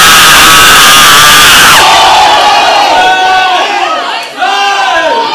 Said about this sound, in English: If you believe Jesus is about to do something, give the Lord a shout.